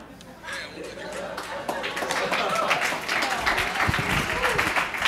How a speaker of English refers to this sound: Only here would that get applause.